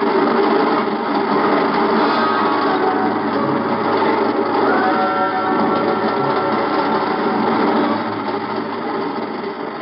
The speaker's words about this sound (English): I reach up and jerk it loose just as the train thunders onto the bridge.